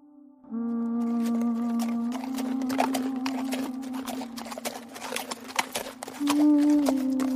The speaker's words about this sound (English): You guys ride up on your horses and they come to a halt in front.